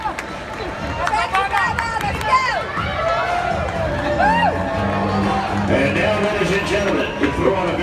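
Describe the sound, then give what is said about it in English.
A crowd-cheering sound effect plays steadily for about eight seconds at a baseball game's Country Music Night: a dense wash of many voices with scattered high whoops and shouts rising and falling above the roar. “Let me hear the crowd with the sound effect this time.”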